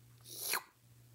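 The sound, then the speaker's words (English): A dog makes a single brief, breathy noise, a quick snort-like sound that rises and fades in under half a second, fairly faint over a low steady hum, with no talking. “My dog?”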